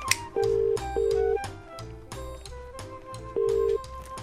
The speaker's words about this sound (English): It's making a phone call.